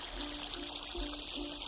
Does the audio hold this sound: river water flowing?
yes